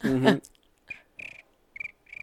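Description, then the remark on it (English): A short voiced sound opens, then four quick, shrill cricket-like chirps follow at a steady rhythm with brief silences between them, moderately loud. “Well, you have cricket sounds.”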